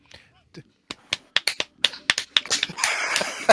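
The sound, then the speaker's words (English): A run of sharp hand slaps against a leg, starting sparse and quickening into a loud, irregular flurry of a dozen or more smacks, ending in a noisier scramble. “Commence the leg slapping.”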